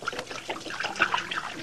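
Self-polishing Glow Coat floor wax pouring out in a steady, gurgling trickle, moderately loud, with small splashy bursts as it spills onto a hard surface to make a little puddle.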